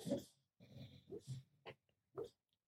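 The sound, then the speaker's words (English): A female dog makes soft snuffling, whimpering noises in her sleep in the room, a few short muffled bursts and breathy snorts, quiet and irregular, with no talking. “Our dog is in the room with us and just started making some noises in her sleep.”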